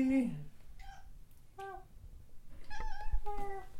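A cat meows several times in short, high calls spaced a second or so apart, clear over a low background rumble.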